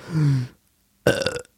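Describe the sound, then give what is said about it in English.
Two loud burps, made by sucking in air and burping it out, with a short pause between them: a low, droning belch followed by a harsher, rougher one that ends abruptly. No one speaks. “Yeah, I can just like suck in air and then burp it out instantly.”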